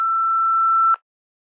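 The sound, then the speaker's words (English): A single steady electronic answering machine beep, clear, holding one pure tone for nearly a second before cutting off abruptly, followed by silence. “Leave your question about your child's health at the beep.”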